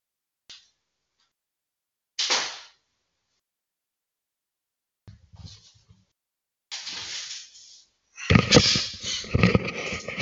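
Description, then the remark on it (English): A door is handled and shut: a faint click, a brief whoosh, low thumps and hissing scrapes, then a louder burst of clattering bangs at the end. No one speaks. “Hold on, let me close this door here.”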